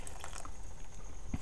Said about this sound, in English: Right, I've added the pumpkin to the broth, to the pot, and I'm going to add the hot water from a kettle to that bunch because... Oh, okay. Just going to cover the pumpkin with hot water.